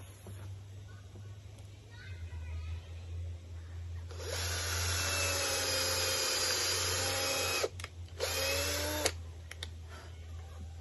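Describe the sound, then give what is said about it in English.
A power drill whirs and bores a hole through wood to secure copper wire for an antenna, for about five seconds, with a brief stutter near the end, over a steady low background hum. “But I do drill it in opposite directions on either side.”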